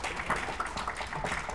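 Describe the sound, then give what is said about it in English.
An audience claps in a steady, dense burst of applause lasting a second or two, a continuous crackle of many hands with no voices over it, applauding as a sign of agreement in answer to a speaker's question. “And how many of you out there, by a sign of applause, think that the people who provide services to us ought to look and come from communities and backgrounds that actually represent us?”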